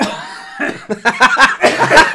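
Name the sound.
cough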